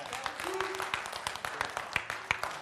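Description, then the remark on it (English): A church audience claps steadily for a few seconds during a sermon, a dense patter of many overlapping hands with a few sharper claps standing out, moderately loud with a faint murmur underneath. “Man, first service didn't even clap on that point.”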